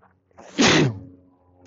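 A single loud, close sneeze bursts out after a short intake of breath, then trails off into quiet breathing. No one speaks.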